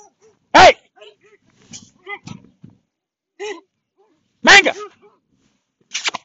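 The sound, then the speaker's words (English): A few dogs bark: two loud, sharp barks several seconds apart, with quieter yips and whines scattered between them and a brief bark at the end. “You've got a few dogs.”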